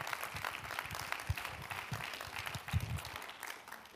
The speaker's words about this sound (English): And if you believe that God has got miracles in store for your life, would you just clap your hands to the Lord tonight?